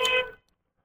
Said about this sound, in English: There's another cab that almost killed me. I heard that honk.